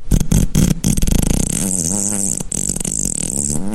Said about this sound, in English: These are the life-sized farting animals and Stinky Hippo's puppets and puppeteering team who operate each and every one of these adorable but oh, so stinky you'll be sick, you'll just barf right down your shirt creatures.